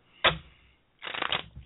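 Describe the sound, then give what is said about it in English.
Cards being shuffled for a card reading: a sharp riffle snap, a brief pause, then a longer rapid fluttering riffle of cards, with no voices. “I have a shuffling.”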